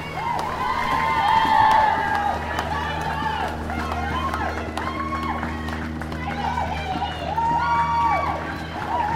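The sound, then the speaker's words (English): A group of pink cheerleaders on a lorry, heard while passing them, cheer and shout without pause for the whole stretch, high voices rising and falling in excited calls over a steady low rumble. “Just passing a group of pink cheerleaders on a lorry. That's where all the noise is coming from.”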